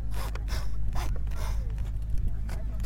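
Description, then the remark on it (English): A saw rasps back and forth through bone in rough, rhythmic strokes, about five or six harsh scraping bursts over a steady low hum. “I don't know if you can hear that, but we're sawing through.”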